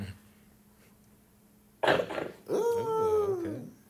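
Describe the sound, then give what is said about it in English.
A sudden harsh, choking cough bursts out after a quiet stretch as water goes down the wrong pipe, followed by a strained, rasping vocal gasp with a wavering pitch as someone struggles to clear their throat. “I'm gonna choke. What just happened? The water went down the wrong pipe.”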